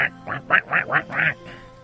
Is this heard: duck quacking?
yes